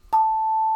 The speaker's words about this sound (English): Also made by the Schulmerich Company are the hand chimes that we have here.